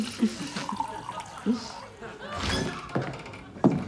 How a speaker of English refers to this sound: Now, look, let me top up your glass,